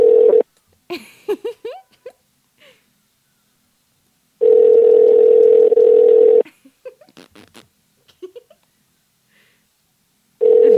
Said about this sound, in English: They're being dorks while we're waiting for people to pick up.